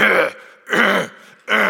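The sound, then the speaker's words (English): Three harsh, raspy throat-clearing hacks in quick succession, fairly loud, each a rough burst with short pauses between, like a dry hacking cough, from a man who is coming down with sniffles and a cough. “Kind of the Akron resident sniffles and coughing and hacking. And so Friday and Saturday, I was doing this at home.”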